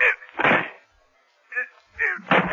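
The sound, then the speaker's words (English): A locked door is being broken down: a series of loud, heavy crashing blows, each a short burst of splintering impact, separated by brief pauses. “This door is locked from the other side, Faraday, so we can break it down.”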